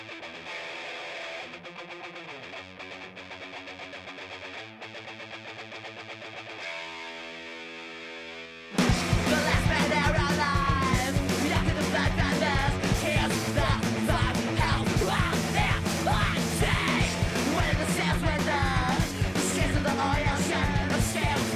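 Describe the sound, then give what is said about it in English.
A recorded rock song opens with sustained, droning distorted chords for several seconds, then abruptly erupts into loud, dense, full-band playing with heavy distortion and yelled vocals. “I like that song. And I just want to hear how that compares to what we're listening to now”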